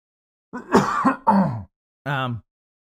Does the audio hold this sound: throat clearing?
yes